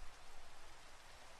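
Steady, hissing rainfall forms an even wash of noise with a soft pattering texture, low in level and unbroken throughout, with no voices or other sounds.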